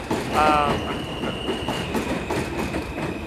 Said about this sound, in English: Here's the train.